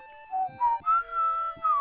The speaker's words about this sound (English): A little bit of Legend of Zelda, the dungeon theme, and then the whistle from Super Mario 3.